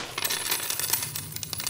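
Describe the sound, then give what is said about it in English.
A pile of coins pours and clatters down in a bright, dense metallic jingle, many small clinks tumbling over each other for under two seconds with no voices. “That's darn near a year's worth of scratch right in front of you.”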